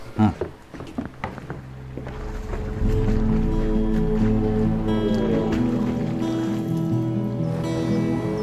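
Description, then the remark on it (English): A boat moves through water across a sea: after a few seconds of knocks and bumps, a steady engine-like drone and rushing water swell up and hold loud to the end. “Let's get on the fucking boat, because this thing ain't going to last long in this water, I tell you.”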